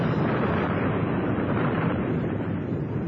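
A volcano erupting at its side, with flaming, bubbling lava: a steady, loud roaring rumble fills the whole stretch, deep and dense, with no pauses or separate blasts and no voices.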